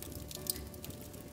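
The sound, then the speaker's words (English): A quiet, wet sip of Elijah Craig Barrel Proof C918 bourbon: a soft slurping squish lasting about a second, with a small click in the middle and no voices. “Well, maybe first I'll have a little sip of this Latch Craig Barrel Proof C918.”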